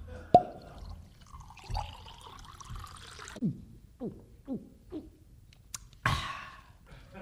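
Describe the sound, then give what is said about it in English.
Milk glugs as Mr. Hard Disk pours it for a couple of seconds after a sharp clink, using gravity, then four or five rhythmic swallowing gulps follow as he drinks it, ending with a brief louder burst, all fairly quiet. “Hard Disk has used gravity to pour and drink his milk.”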